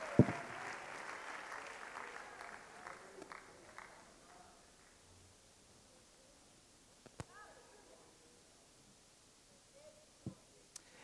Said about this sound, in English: On your way down to your seat, clap your hands one more time to the Lord Jesus if you love him this morning.